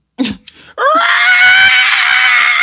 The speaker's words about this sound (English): Ah, and then a bunch of screaming. Just run. Yeah, just a bunch of screaming. Just gotta let shit out.